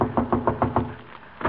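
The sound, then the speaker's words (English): A quick run of about six firm knocks on a wooden door, evenly paced, followed by a short pause and a single further knock. No one speaks. “Shall I knock, Doctor? Go ahead.”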